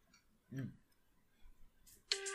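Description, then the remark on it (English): A bright, buzzy electronic wake-up alarm tone, played for comparison, bursts in loudly near the end, rich in harsh overtones, after a short low thump and a few faint clicks in otherwise quiet surroundings. “That's a way less terrible noise, and it'll wake you the fuck up.”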